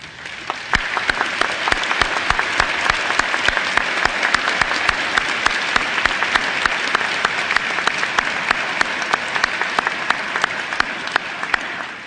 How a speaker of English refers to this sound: Where are you, Bobby Seale? And we should all applaud him.